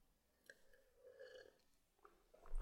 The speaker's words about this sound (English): I'm taking a sip of beer.